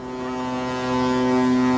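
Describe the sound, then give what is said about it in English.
A deep, sustained ship horn blasts steadily from a boat leaving harbor on a cruise along a Norwegian shipping route, rich in low harmonic tones, holding loud and even for the whole stretch with no talking. “Watching that boat leave the harbor”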